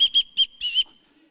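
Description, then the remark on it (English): A person whistles a quick, bright tune: three short chirpy notes followed by a longer held note, clear, with no talking. “But now I'm a person that can whistle, so I'm going to be around whistlers.”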